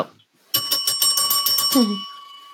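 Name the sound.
bell ringing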